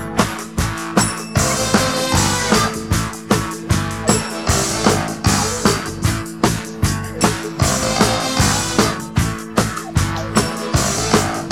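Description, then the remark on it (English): A funk horn section punches out a tight, repeating riff over a steady, driving band groove, loud and upfront, with brassy stabs locked to the beat and no singing. “Listening to the horn part, at first I thought there might be a synthesizer playing along with them, but now I'm not sure.”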